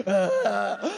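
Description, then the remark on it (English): A person vocally imitates their own wheezy, rattling breathing: a strained, groaning voiced sound about a second long, fairly loud, with wavering pitch and a final rising gasp. “Yeah, my breathing, it sounds like shattered glass is in my lungs.”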